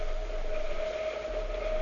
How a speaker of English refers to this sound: Listen, there's a train coming now. You stay there, Watson, and watch how closely beneath the window the carriage roofs pass.